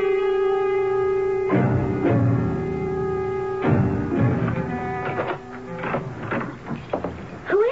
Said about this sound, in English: Oh, you gave me a start. I woke up and heard the door. I thought someone broke in.